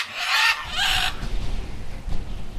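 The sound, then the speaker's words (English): Carnivorous parakeets dive-bombing two boys clinging to a cliff on a Pacific island in pelting rain at dusk let out two harsh, shrill screeches in quick succession, each about half a second long, then a low, rumbling wash of noise carries on beneath. “On an island somewhere in the Pacific, two boys cling to a cliff in the pelting rain at dusk as carnivorous parakeets dive-bomb them, screeching.”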